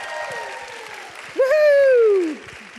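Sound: audience applause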